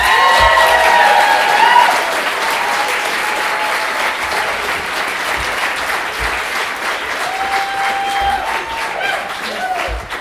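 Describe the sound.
Sustained audience applause welcoming a performer to the stage fills the whole clip, a dense steady wash of many hands clapping, loudest at the start and easing slightly, with faint voices and a few cheers mixed in.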